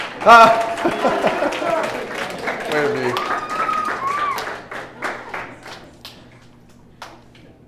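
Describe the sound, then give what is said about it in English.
A round of applause from an audience for a volunteer called up, a dense patter of claps that gradually thins out and fades into a few scattered claps. A voice exclaims and people talk over the start. “Round of applause for”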